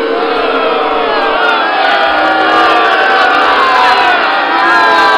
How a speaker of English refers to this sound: Yes, it's so bad people email me sound clips of them booing.